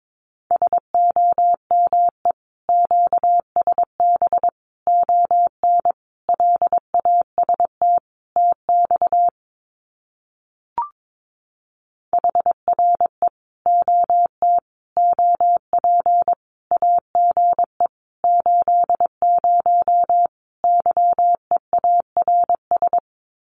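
Morse code sending common QSO phrases at 22 words per minute as a steady mid-pitched tone, keyed at a brisk pace in rhythmic bursts of dots and dashes, with a short pause and a single blip midway, no voices.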